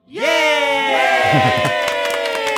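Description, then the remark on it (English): A crowd breaks into loud, sustained cheering and whooping, many voices overlapping, with scattered hand clapping joining in during the second half. “Yeah, we give you a little applause for that.”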